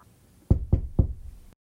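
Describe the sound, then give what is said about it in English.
Three firm knocks on the thin wooden door of a house in steady succession, resonant, each a low thud with a short decay, followed by silence. “why wasn't Summer answering the door? Could she still be asleep and not hearing me?”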